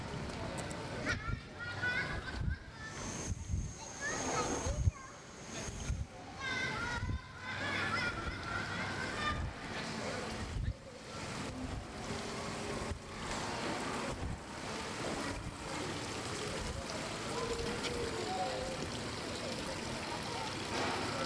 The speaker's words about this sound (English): So there's actually a fountain back here, right past the backlot tour, for the movie Splash from 1984. It says here, this mermaid fountain was Madison's gift to Alan.